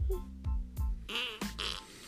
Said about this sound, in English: Let's do bubble fart. I'm good. That's bubble fart.